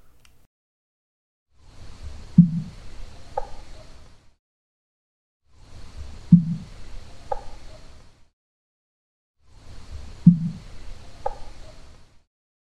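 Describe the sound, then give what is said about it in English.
A dull knock followed by a fainter answering knock at 3:30 in the morning, the same exchange repeated three times with short silences between. Both sound muffled over a low background rumble. “I'm going to replay just the part that's the knock and the answer, and I'm going to play that three times”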